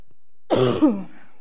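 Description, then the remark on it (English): A fairly loud cough and throat clearing: two rough, raspy bursts in quick succession, then quiet. No talking. “And then tonight, a different kind of justice, and I have to cough.”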